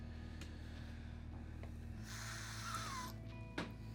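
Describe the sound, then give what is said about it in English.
A voice makes a soft, breathy hissing sound for about a second, imitating a hiss over a steady low background hum. It is fairly quiet, with no talking. “Just the entire time, just a slight, and the carriage driver's probably like, "What the fuck is happening?" Hissing noise.”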